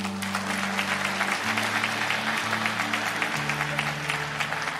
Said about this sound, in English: I think he deserves a clap.